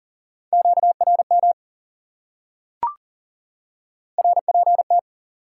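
Rapid Morse code beeps at 40 words per minute on a single steady pitch, sent fast in two short keyed bursts separated by a pause, with one sharp click in between and no voices.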